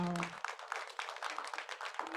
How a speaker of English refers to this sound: Clap your hands for your Basenta leaders.